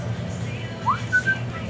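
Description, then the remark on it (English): A brief bit of human whistling of a movie intro tune, a quick upward swoop followed by a short held note, fairly quiet over a steady low background rumble. “whistle intro for you.”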